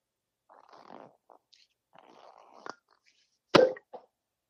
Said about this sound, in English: This is how you open a bottle of champagne. Listen. Hold on.